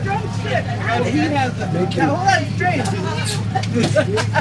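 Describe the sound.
A crowd of voices chatters and overlaps, a busy babble of many people as passengers are loaded onto a bus parked in a no-parking zone, with the steady low hum of the idling bus engine underneath.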